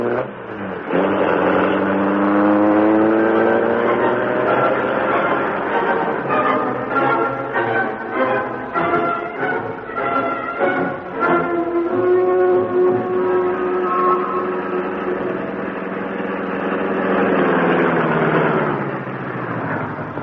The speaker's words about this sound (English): The door slammed, the motor roared. As the great car leaped forward, a section of the wall slid up on oiled hinges. And the Black Beauty rushed into the darkness and the night.